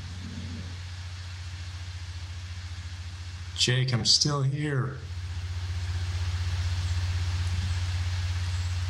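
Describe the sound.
A lawn mower engine drones steadily throughout with a low, even hum, briefly joined by a person speaking a few words over it before the motor continues alone, slightly louder.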